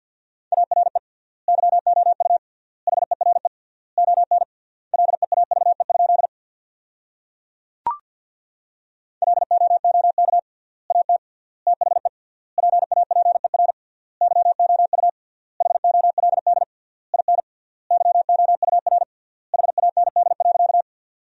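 Rapid Morse code at 50 words per minute with triple word spacing, sending sentences built from the top 400 words, in a single steady mid-pitched tone, keyed in quick dots and dashes with short pauses between words, interrupted once by a sharp click partway through.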